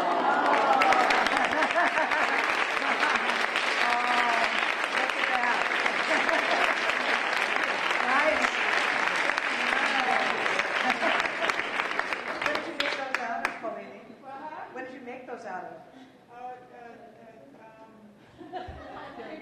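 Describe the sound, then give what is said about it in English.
Sustained audience applause for nurses in the front rows who practiced together in the 1970s at Good Sam in Corvallis, a dense wash of clapping lasting about thirteen seconds before tapering off, followed by a person speaking with light chuckles from the crowd. “So would you stand for a little bit of applause?”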